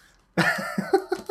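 A sudden, loud sneeze bursts out of near silence, trailed by three or four shorter, sharp breathy puffs in quick succession. No one speaks.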